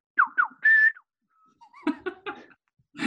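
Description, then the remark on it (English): A person whistles a short phrase: two quick falling notes, then a longer held note, followed by a pause and a burst of laughter. “So I know he remembers that whistle. Do you want to give us a little rendition?”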